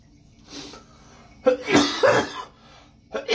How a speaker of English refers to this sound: Laughing and coughing.